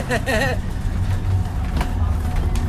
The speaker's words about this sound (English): All right, look at all these cars coming around the corner. They're coming around. Trump flags, Shiva flags, everybody's coming out. We have literally hundreds of vehicles in this convoy.